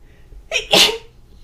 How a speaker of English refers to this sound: Oh, my God. I'm about to sneeze. Oh.